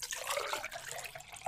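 Water pours in a steady splashing stream for a second or so, bright and bubbly, with no one speaking, as water is poured to drink.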